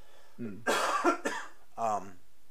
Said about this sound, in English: Well, you know, hold on, I got a cough. I'm still battling this sickness.